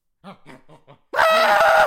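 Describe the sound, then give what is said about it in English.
A person imitates a screaming goat: four short, bleating syllables, then one long, loud, strained scream held for nearly a second, with no other sound. “Those screaming goats, yeah.”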